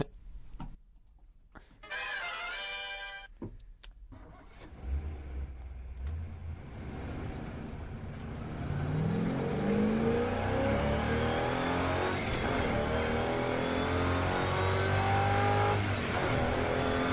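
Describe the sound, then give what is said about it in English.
A few sharp clicks and a short buzzing tone, then a car engine starts and revs repeatedly, its pitch climbing in loud surges that hold strong to the end. “Shell V-Power. Make your engines sing.”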